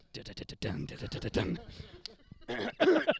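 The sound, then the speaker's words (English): A person coughs several times in harsh bursts, with some vocal sounds mixed in between the coughs. “this Windsor cough.”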